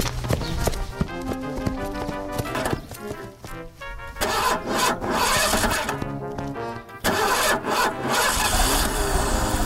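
A car engine turns over and sputters to life, coughing and revving loudly in uneven bursts with brief drops, with no voices.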